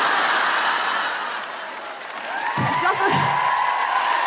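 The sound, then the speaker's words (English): A crowd of men aged 21 or over with a degree and property cheers and applauds steadily for several seconds, a loud, sustained wash of clapping with a few whoops and voices rising out of it. “So if you're a man, you're 21 or over, and you have a degree and property, give us a cheer.”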